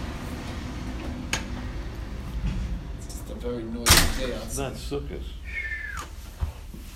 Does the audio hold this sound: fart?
no